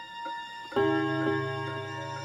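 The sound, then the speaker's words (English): A railroad clock ticks at a steady half-second pace while a bright, bell-like strike rings out and lingers, its sustained tone humming beneath the continuing ticks. “My grandfather's railroad clock had struck the seventh hour of the afternoon not so long ago.”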